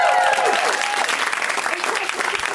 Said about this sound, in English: You know, it is this comic's first time on the show, so when it is somebody's first time on the show, we welcome them with very much exuberant applause.